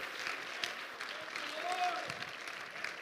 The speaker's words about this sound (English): Come on, clap your hands if you love the Lord tonight. Woo.